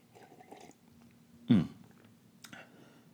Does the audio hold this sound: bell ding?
no